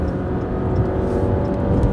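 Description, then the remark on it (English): A car engine in sport mode hums loudly and steadily from inside the vehicle as the driver goes to pass another car, a dense low rumble with a droning tone and constant road noise, with no voices. “All right, we're in sport mode now. Pass this car.”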